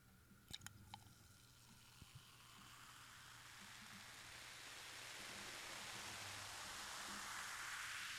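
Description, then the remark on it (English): A few sharp clicks at the start give way to a steady fizzing hiss of zero sugar soda being poured, growing gradually louder and brighter over several seconds, with no talking. “We definitely got that Diet Coke fizz that takes forever to pour on an airplane.”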